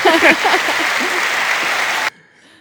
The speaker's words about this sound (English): Why didn't you do the round of applause?